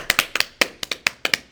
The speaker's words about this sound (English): Everyone give a clap for him.